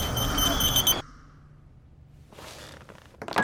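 A phone alarm sounds loudly for about a second with a bright, piercing electronic tone, then cuts off into near-quiet with faint rustling and a brief noisy burst at the end.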